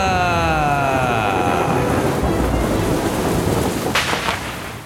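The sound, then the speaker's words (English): Loud, continuous rumbling thunder over a steady wash of heavy rain, with a brief sharp crackle near the end as the storm noise eases slightly. “Welcome to the Wheel of Thunder!”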